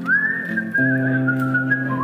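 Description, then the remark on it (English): A single long whistled note, steady and fairly loud, that wavers slightly in pitch, held over low sustained droning tones that swell partway through; nobody speaks. “I'm as Australian as an old man's whistle.”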